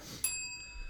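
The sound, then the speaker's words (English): A single bright bell ding strikes and rings out with a clear, sustained high tone that slowly fades, followed by a short thump at the very end. “I like the bell.”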